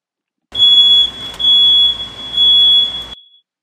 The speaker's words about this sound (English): If you heard that when I was doing the beep noises, or this one, which is funny. Beep. Beep. I added that one on here because I thought that was hilarious because I always think of that every time I hit the horn.